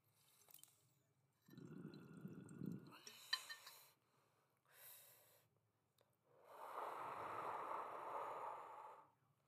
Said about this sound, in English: I'm going to take a hit out of my bong. So, with that being said, if you got it, let's take a hit. But if you don't, that's all right. So, let's take a hit.